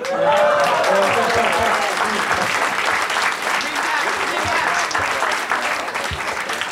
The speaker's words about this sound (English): I hear your applause for both sides,